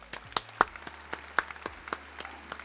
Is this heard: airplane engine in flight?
no